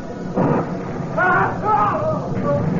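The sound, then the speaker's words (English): A loud stormy rumble of thunder with steady rain noise and wind, swelling in a couple of heavy bursts, while muffled voice-like tones sound faintly over the continuous roar, as a storm builds at night over a choppy sea aboard a ship. “Wind started acting up, and began to rain. Looked like a storm was building.”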